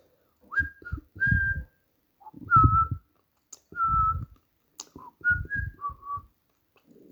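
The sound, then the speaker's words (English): A voice whistles roughly six short, shrill notes in an uneven rhythm, each with a breathy rush underneath, imitating creatures whistling a warning to their fellows. The whistles are fairly loud. “For there, in the fields that lay between them, were fully 100 creatures of similar, 100 creatures similar to those behind her, and all were on the alert, evidently warned by the whistling of their fellows.”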